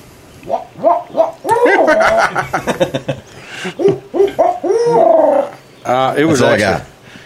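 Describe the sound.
A man's voice imitates an owl's hoot, giving a string of short, loud, throaty hoots followed by a few longer, wavering calls that sound strained and somewhat animal-like.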